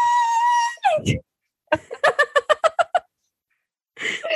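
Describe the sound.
A voice imitates the long, steady, high-pitched shriek of a lobster being boiled, then breaks off into a string of quick, wheezy bursts like breathless laughter, with a brief strained vocal sound at the end.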